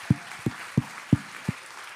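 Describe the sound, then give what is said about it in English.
Five separate, evenly spaced claps ring out over about a second and a half, each a short dull smack with quiet pauses between them and no talking; the audience is clapping for the volunteers, the media and sound team, the ushers and the children's helpers. “Give them a big old clap.”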